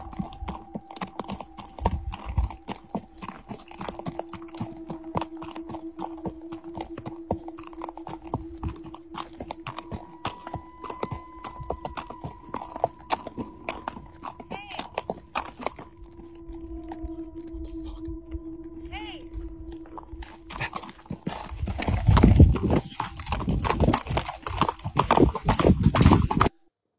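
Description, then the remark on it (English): Steady clip-clop of horse hooves as a man rides a horse back from setting up trail cameras on his property, a brisk repeating rhythm, with sustained tonal hums in the background and the hoofbeats growing louder and busier toward the end. “He's riding a horse.”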